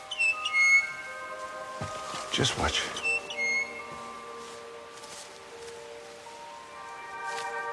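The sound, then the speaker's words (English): A hooyah, a rare bird supposed to be extinct, giving long whistling calls, clear sustained tones that step between pitches over several seconds, briefly interrupted by a short spoken remark and a burst of rustling. “I reckon that bird was a hooyah. Supposed to be extinct.”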